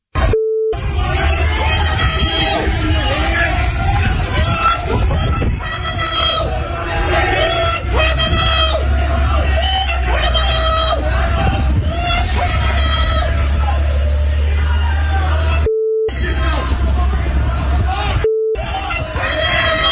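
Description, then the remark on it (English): A large crowd outside Queen's University in Belfast heckles and boos Hillary Clinton, calling her a war criminal, as she attends a ceremony installing her as chancellor: a dense, continuous roar of yelling voices that cuts out abruptly a few times near the end, with brief steady beeps in the gaps. “Poor Hillary heckled, booed outside of the Queen's University in Belfast as she attended a ceremony installing her as the college's first female chancellor.”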